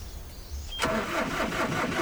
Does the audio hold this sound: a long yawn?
no